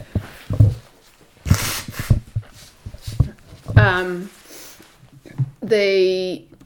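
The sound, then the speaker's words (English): A few short, breathy nose blows, fairly loud, with a brief tonal honk toward the end and some faint voice sounds in between. “I'm just gonna have to blow my nose, sorry, because I have my 2-year-old.”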